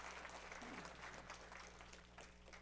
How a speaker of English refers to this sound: With that, let's just clap for them. I don't know, it seems like a good thing to do.